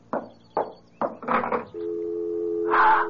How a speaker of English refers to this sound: It's the dial tone.